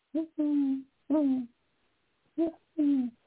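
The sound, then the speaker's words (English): Clear owl hoots in a rhythmic pattern in the evening outside a home in Dana Point, California: a short hoot followed by a longer drawn-out one, a single long hoot, then another short-long pair, with brief silences between. “I walked out my front door to take my dogs for a walk in the evening, and I hear this owl.”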